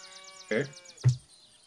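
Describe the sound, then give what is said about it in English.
Two short cow moos in quick succession on a dairy farm, the first a higher, strained call and the second a deeper, brief low, with faint chirping running steadily in the background. “I hear the dairy farm in the background. Moo moo cows.”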